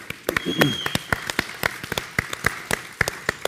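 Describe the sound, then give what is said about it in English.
A small audience gives a round of applause as thanks for the preparation of a meal, sharp hand claps coming several per second in a fairly steady rhythm over a faint murmur of voices, with a brief high whoop near the start. “Can we just give a round of applause?”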